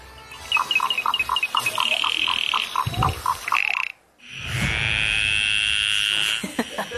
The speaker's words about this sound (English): The calls and croaks of 58 endangered Aussie frogs have scored third place on the charts with their album …